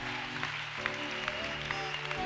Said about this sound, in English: This is a bizarre miracle. Come on, give the Lord a clap for it.